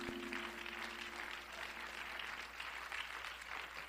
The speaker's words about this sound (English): And would you clap your hands to the Lord?